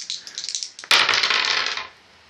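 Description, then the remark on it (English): Dice clatter on a hard tabletop: a few light rattling taps, then a louder tumbling roll that lasts about a second before settling, with no voices. “Wait, you got the dice, right?”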